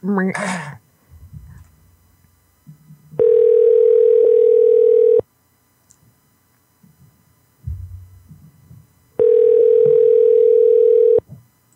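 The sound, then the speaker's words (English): Two long, steady ringback tones from an outgoing phone call, each buzzing loudly for about two seconds with a long pause between, and faint murmuring and small noises in the gaps. “Come on, baby. Answer the phone, baby.”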